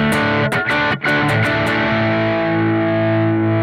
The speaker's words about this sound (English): Need more tone. It's too woolly and powerful. All right, fuzz knob all the way down. Let's crank it up. That's a pretty respectable, just crunchy rock tone. Yeah, I mean, that's as low as this sucker goes.